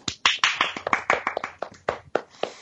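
A short round of applause from a small group applauding themselves for finishing their discussion of Channing Tatum, with sharp hand claps in a quick, uneven burst lasting a few seconds, and no talking.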